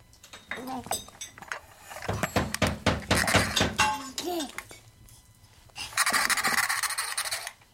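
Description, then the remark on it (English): A rapid flurry of sharp crashes and clattering impacts, like things being smashed and broken, followed by a louder burst of crunching debris, with brief vocal sounds mixed in. “so I smashed and smashed and smashed.”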